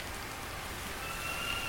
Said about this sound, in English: What they probably heard underneath the now deafening rain, if they heard me at all, were the knocks of simple trick-or-treaters who they wished to avoid.